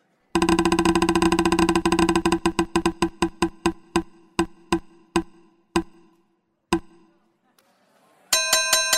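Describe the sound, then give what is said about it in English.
A topic prize wheel clatters with rapid ticking that gradually slows into separate clicks, coasts to a stop landing on 'Straight Pride Parade', and is followed by a bright, ringing chime. No one speaks. “Let's spin the wheel.”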